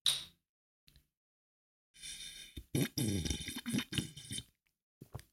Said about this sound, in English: And just in case you don't know, to slurp is what happens when you're drinking something and you make that sound. Actually, I got a bottle right here. Hang on. I will show you sonically what slurping is.